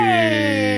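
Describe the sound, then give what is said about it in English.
A dog lets out a sustained, slightly falling howl, fairly loud, with a steady whining tone and no talking over it. “All the weird noises you hear are dogs.”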